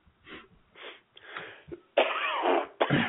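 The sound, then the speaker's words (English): A run of raspy coughs, starting with a few short, moderate bursts and building into a loud, strained, wheezing coughing fit, with no talking. “Coughing? Oh, my. Yeah. Well, coughing.”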